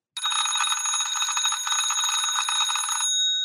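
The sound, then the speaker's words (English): An early 1900s mechanical wind-up doorbell rings in a fast, continuous metallic rattle for about three seconds, loud, then stops abruptly, leaving a brief ringing decay. “This particular bell that I'm going to ring is from the early 1900s.”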